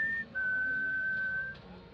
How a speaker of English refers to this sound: … stood in the street and whistled up to the second-floor windows, hoping to get his girlfriend's attention